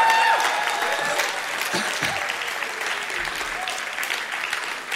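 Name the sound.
audience applause and cheering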